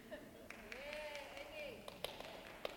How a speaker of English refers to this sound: That's your mom clapping.